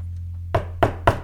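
Three firm knocks on a door in quick, slightly uneven succession, sharp, over a steady low hum in otherwise quiet surroundings.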